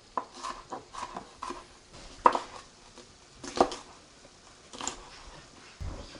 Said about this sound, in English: All right, back to the green pepper. Let's finish chopping that up.